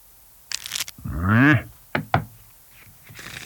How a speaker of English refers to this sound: Let me just shuffle these up so you can see that they're just ordinary playing cards.